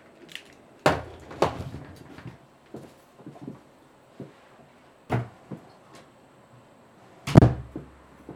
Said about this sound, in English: Sorry to interrupt. I just have to close my office door. Can you bear with me just one moment?